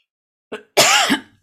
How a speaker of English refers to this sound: coughing